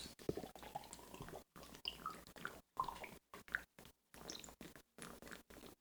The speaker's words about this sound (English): He got like fucking 60% of a pint left. You going to chug that shit